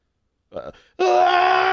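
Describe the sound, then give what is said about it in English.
A person mimics an anguished scream: a short strained groan, a brief pause, then a loud, sustained, raw shriek that runs on until the end. “fucking screaming.”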